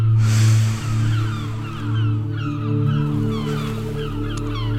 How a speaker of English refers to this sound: Ignoring the birds on this particularly birdy sort of day.